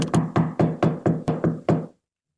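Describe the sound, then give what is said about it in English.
A series of about nine firm knocks on a locked wooden door in a steady, insistent rhythm, starting with a quick double rap, then stopping abruptly into silence. “She must be out. The door's locked. Knock again, if you don't mind.”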